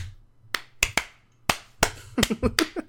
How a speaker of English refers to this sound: Can we all clap at the same time? Can we all clap?